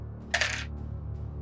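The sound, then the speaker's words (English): A quick clatter of a lucky die tumbling onto a hard surface for a dexterity saving throw in a tabletop role-playing game, a bright rattling burst lasting about a quarter second, fairly loud over a low background hum. “Give me dexterity saves. I'm going to use a lucky dice.”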